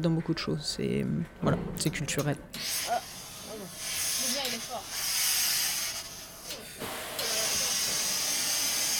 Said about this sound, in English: Irons fizz and spit on the second floor of the Teinturerie Germaine, a dry cleaning and leather dyeing shop located near the Champs-Élysées. One woman tackles the delicate pleats of a pale purple designer dress.